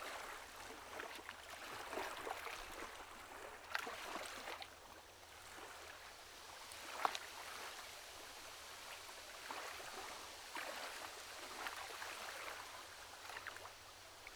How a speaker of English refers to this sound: Lazarus awoke to the jerking of the boat as Urzul pushed them into the river. Lazarus lay on the bottom of the boat, on his side.